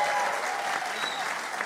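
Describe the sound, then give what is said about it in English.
A live audience claps steadily for Anthony Moyles, Desi Dolan and Oisín McConville, a dense, even wash of hands that holds at a fairly loud level for the whole stretch without rising or fading. “Keep the applause going, please, for Anthony Moyles, Desi Dolan and Oisín McConville.”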